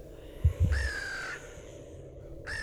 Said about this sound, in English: The screaming crow barked again, seemingly satisfied enough with its portion of the human smorgasbord to leave it be for now.